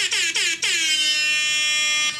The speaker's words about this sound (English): Rap air horn.